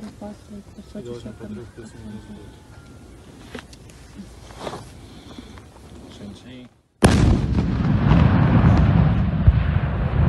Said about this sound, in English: We're going to show you now a video of what appears to be a detonation.